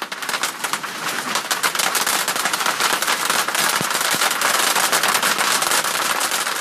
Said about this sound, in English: The hailstorm that struck Metro Denver last month was the most expensive natural disaster in state history, with more than $1 billion in losses.